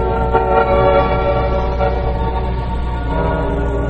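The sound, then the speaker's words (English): A heavy freight train slowly climbing a mountain grade rumbles steadily, with a deep continuous drone, grinding mechanical noise and sustained harmonic tones like a horn blending in throughout. “Tonight's file opens aboard a freight train that's slowly climbing a mountain grade.”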